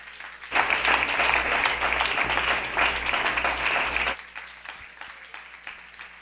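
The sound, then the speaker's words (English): A standing audience claps hands to the Lord in a dense, steady burst of applause lasting about four seconds, then it stops abruptly, leaving a low hum and a few scattered sounds. “Everybody stand and clap your hands to the Lord.”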